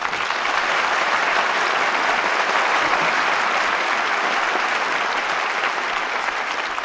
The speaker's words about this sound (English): Well, I think that applause says it all.